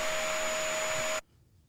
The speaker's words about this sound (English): It was vacuum. Oh, it's a vacuum.